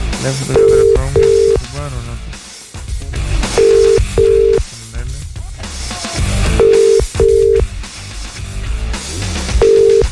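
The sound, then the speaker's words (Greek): An outgoing phone call's ringback tone buzzes in short paired bursts about every three seconds, loud and steady, with nobody answering, while voices and background noise carry on underneath. “ήρθες εσύ και δεν σηκώνει άνθρωπος πάλι τηλέφωνο.”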